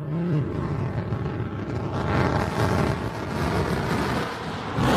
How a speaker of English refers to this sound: And there you see all the speed bleeding off of the vehicle and waiting for our BE-3 engine to relight. There it goes.